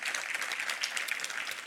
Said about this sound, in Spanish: Siempre me gusta extenderles una grata bienvenida, y todos los que estamos aquí en casa, vamos a darle un aplauso fuerte a aquellos que nos visitan en la pantalla.